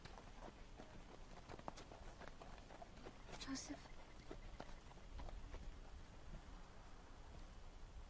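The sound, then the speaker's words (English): Donkey hooves clip-clop in a steady, plodding rhythm as a person rides the donkey, over a low outdoor hiss, while a person speaks briefly. “And you could go be registered without having to drag me on this donkey for 5 minutes.”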